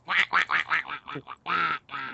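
A duck quacks loudly, about eight nasal quacks in quick succession, the last two longer and drawn out, with no other sounds around them.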